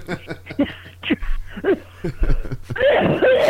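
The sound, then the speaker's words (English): A loud coughing fit from a person with a chronic cough: a rapid string of harsh, uneven coughs with throaty gasps between them, ending in a rougher, wheezing, sputtering burst. “I had a chronic cough.”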